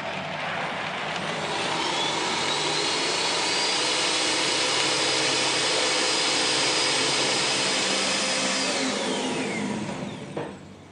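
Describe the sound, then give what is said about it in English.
A blender runs steadily for about ten seconds, blending water and almonds that were soaked for about 13 hours, with a loud, even whirring roar and a high motor whine, then cuts off. No one speaks. “Okay, so now we've blended all the almonds and the water together, and we then go into the process of straining it through a bag.”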